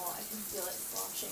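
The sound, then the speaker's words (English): Steady rushing water, like a tap or tub filling, runs continuously at moderate volume as a woman fills herself with water rectally. A voice can be heard faintly mixed in beneath the flow. “So this woman just filled herself with water rectally?”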